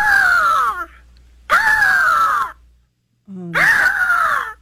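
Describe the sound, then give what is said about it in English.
A person imitates a peacock call three times, each a loud, harsh, wailing cry with a falling pitch, separated by short pauses and one brief low murmur. “That's me doing a peacock noise.”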